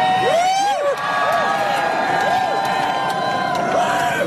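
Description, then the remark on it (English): A large crowd shouts words together in unison, a human mic in which people in a circle around a speaker yell his lines louder to amplify them. The massed voices are loud and continuous, with overlapping calls rising and falling throughout. “The human mic is a process where you get a speaker to yell out his speech, and then everyone around him in a circle yells it in unison together louder, and then that way it is amplified, gets to a wider range of people.”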